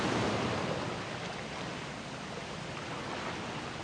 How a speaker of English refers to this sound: Water is now pouring into the cabin through the window's openings. In a few seconds, it will be submerged.